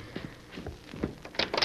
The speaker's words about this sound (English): And then someone rapped on the door.